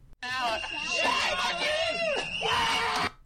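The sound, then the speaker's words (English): High-pitched, sustained screeching from several young voices during an attack, loud and continuous for about three seconds, with wavering pitch and shrill overlapping cries that swell and dip without pause. “But yeah, so basically they're screeching and doing air horns and whistles and bullhorns and screaming, you know,”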